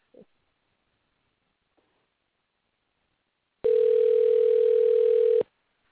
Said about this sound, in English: So hold on, you may hear the phone ringing. So just a moment. It'll be worth the wait.